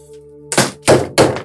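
impact, knocking on a door

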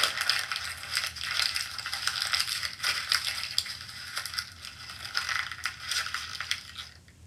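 household object, paper being crumpled

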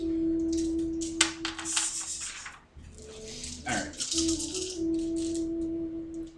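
household object, rolling dice

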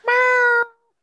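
animal, cat meowing

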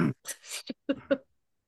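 human body sound, cough or throat clearing

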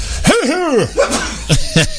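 human body sound, sneeze

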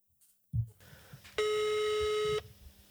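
signal or alarm, telephone ringing tone

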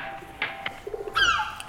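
bird, birds calling

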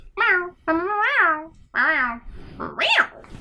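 animal, cat meowing

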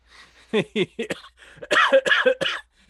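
human body sound, coughing and throat clearing

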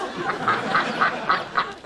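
bird, duck quacking

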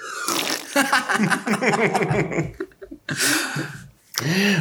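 human body sound, quiet fart

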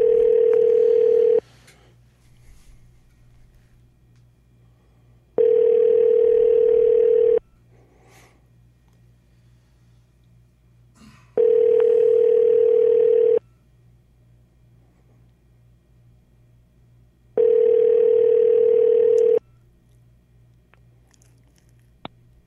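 signal or alarm, telephone ringback tone

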